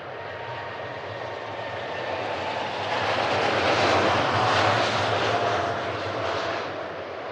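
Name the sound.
jet aircraft engine roar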